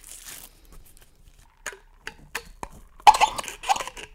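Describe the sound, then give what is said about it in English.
Soda from a McDonald's cup slurped through a straw: a few quiet, brief sucking clicks give way to louder, sputtering gurgles as the straw pulls air and liquid near the end. No one speaks. “The straw sound.”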